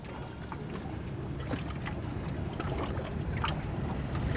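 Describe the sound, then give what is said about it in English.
Steady low rumble of a boat moving along a narrow canal behind ornate 16th-century buildings in Hamburg, Germany, with water lapping and faint scattered clinks and splashes over a constant wash of engine and wind noise. “This riverside city is one of Europe's biggest ports, and it's full of canals like this one, a narrow channel tucked behind ornate 16th century buildings.”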